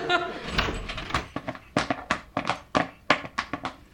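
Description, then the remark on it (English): A door swings open with a solid thunk, followed by a quick run of clunky, irregular knocks and thuds, fairly loud. “The door swung open and four Fig Newtons entered.”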